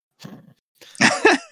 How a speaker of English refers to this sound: Cough, cough.